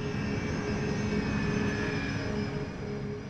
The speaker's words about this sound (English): A turbofan jet engine works by sucking in enormous amounts of air. The air is then highly pressurized by the engine's compressor. This tightly packed air is mixed with fuel and ignited. The force of this reaction propels the jet through the sky.